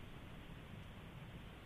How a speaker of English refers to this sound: We had a little technical difficulty there. Can't put my listeners through the static. I do apologize.